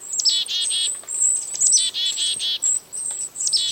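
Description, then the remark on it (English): A mixed foraging flock of chickadees, kinglets and a downy woodpecker in a temperate woodland fills the air with thin, high-pitched chips and trills, overlapping calls coming in quick bursts, with no talking. “A closer look and listen reveal that this foraging flock includes several species of birds, chickadees, kinglets, and even a downy woodpecker.”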